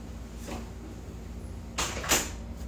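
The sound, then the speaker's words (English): A door is pushed shut, a short scraping slide followed by a soft thud and a brief rattle, with no talking. “You might go close that door.”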